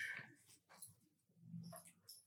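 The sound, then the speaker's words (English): A dog barks a few times in short, irregular bursts, faint, with no one talking over it. “Did you hear the dog bark?”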